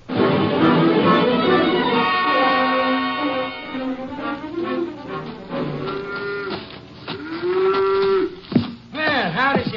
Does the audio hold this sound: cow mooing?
yes